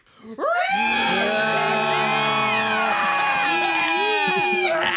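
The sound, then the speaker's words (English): A crowd of voices lets out a long, sustained piercing shriek together, many overlapping high-pitched screams held loudly for about five seconds, an audience imitating the shriek of a demon. “The demon, partially visible in the doorway, lets out an incredibly long, piercing shriek, a noise seemingly surging directly from the bowels of hell.”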